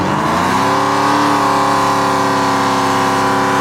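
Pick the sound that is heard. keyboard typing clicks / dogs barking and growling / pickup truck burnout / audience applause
pickup truck burnout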